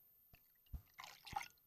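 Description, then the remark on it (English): Ferment ESB beer glugs and splashes into a glass in a short, aggressive pour, with a few drips and fizzy bursts and no talking. “You're going to get more head just from that aggressive pour to get the sound on the microphone.”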